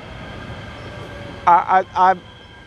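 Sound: light rail train passing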